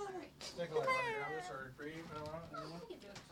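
A cat meows several times, drawn-out, wavering cries rising and falling in pitch, one running straight into the next and fairly loud throughout.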